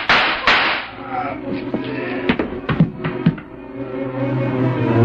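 Several sharp pistol shots crack out in an irregular burst, a few in quick succession, each a loud, abrupt snap over a steady low hum.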